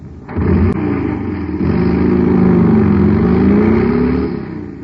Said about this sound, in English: Man, that cycle's roaring like a rocket now because it's supercharged with super fuel.